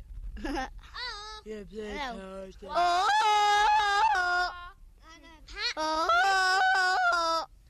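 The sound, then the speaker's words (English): A person imitates a Tarzan-style jungle yell: a few short vocal whoops, then two long, loud, warbling calls that flip rapidly between high and low pitch in a yodel-like ululation. “Will I do the Tarzan call?”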